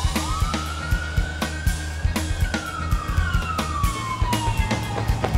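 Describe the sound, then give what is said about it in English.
A police siren wails in a long, slow rise and fall, loud, over a steady low rumble punctuated by repeated sharp thuds. No one speaks. “Why are there sirens going off in this scene?”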